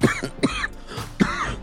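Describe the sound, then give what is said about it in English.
A person with the flu coughs three times in quick succession, fairly loud, each cough a harsh burst followed by a short rasping tail, with no talking. “Excuse my lack of energy, because if I talk to it any higher energy than this, I'll start coughing.”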